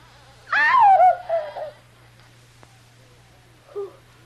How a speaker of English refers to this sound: Kitty stares horrified as the door, which she has so carefully locked, begins slowly opening.